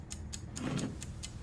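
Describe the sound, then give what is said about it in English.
A countdown timer ticks steadily, about four crisp, evenly spaced ticks per second over a low background hum, with no one speaking. “You said this was the most important thing, and I can give you any answer you want, but I have started the clock.”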